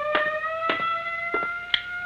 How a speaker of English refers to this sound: What now? First the siren must stop. It offends my ears.